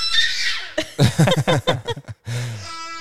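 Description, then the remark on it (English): A young child squeals and shrieks happily, high-pitched bursts of excited vocalizing in quick succession, with a sustained squeal at the start and a long one at the end. “He's very these vocal are today. Happy screams.”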